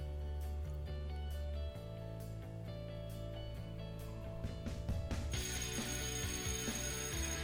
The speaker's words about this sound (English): And that's the bell. So what that means is it's time for another episode.